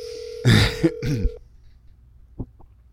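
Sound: phone call ringing out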